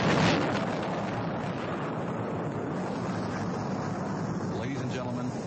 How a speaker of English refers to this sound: 7, 6, 5, 4. We've gone for main engine start. We have main engine start.